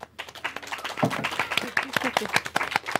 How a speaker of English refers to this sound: Do you love Good Omens? Who loved Good Omens? Round of applause.